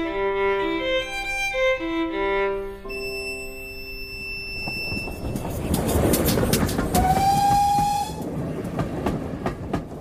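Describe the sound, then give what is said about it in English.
A train rolls along the rails with a loud, steady rumble and rhythmic clickety-clack, after sustained horn tones at the start and a short whistle near the end. No one speaks. “The next train leaves in 15 minutes.”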